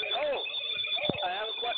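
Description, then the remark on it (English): A caller's voice comes through a phone line from a speakerphone, thin and band-limited, hollow and echoey with a lot of reverb, seeming to say they have a question. “it sounds like you might have a speakerphone on, and we got a lot of reverb there.”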